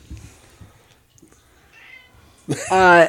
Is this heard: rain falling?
no